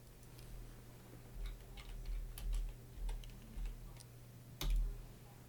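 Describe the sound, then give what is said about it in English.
A ten-sided die is rolled across a hard surface, making a quick scatter of light, sharp clicks and clatters, with a faint steady hum in the background. “Can you roll me a D8, please?”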